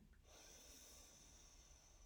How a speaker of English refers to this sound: this is your simple reminder to breathe. Breathing in,